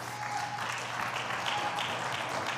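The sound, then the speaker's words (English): A church audience claps their hands for the Lord after a prayer, a steady, dense wash of applause, continuous and fairly loud throughout, with no distinct voices standing out. “If you love the Lord today, why don't you clap your hands?”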